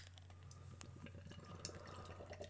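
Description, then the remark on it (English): A 6.9% alcohol, 69 IBU beer pours steadily from a can into a Not a Big Deal glass, a continuous splashing fill with quick gurgles and fizzy crackles over a low background hum, fairly quiet and with no talking. “So, without further ado, we're each going into the not a big deal glass.”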